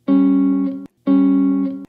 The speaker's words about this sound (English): While a dependent chord contains dissonant or tense intervals, such as the Devil's Interval, better known as the tritone or three tones in music theory.